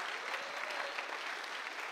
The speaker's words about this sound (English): Yeah, come on, let's give God a big clap of praise for that.